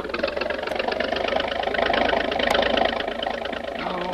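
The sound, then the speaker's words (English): A motorboat engine, its bow shipping water, roars at full throttle to lift the bow and run the boat onto a beach on the mainland, a steady, dense mechanical drone with a rough, rattling texture that holds loud and unbroken throughout. “by giving her the gun, the speed may lift the bow out of the water long enough for me to run us onto the beach”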